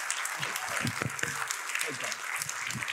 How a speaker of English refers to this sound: I want you to give our worship pastor a big round of applause.